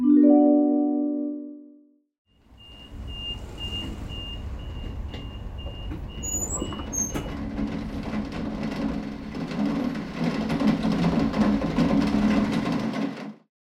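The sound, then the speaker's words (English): A low, horn-like tone fades. Then the rattling metal walls of a train rumble as a storm breaks outside: gusting, howling wind and a steady rush of newly falling rain. A high beeping tone pulses early on, and the noise swells louder toward the end. “Outside the rattling metal walls of the train, the wind howls like wolves and the rain begins to fall.”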